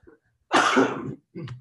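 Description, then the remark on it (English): A harsh cough bursts out for about half a second, followed by a shorter second cough after a brief pause, with no talking. “And the cough is just like, I tell you, you're going to scare some fans with that cough, you know.”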